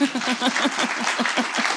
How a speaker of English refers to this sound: I feel like somebody wanted to applaud.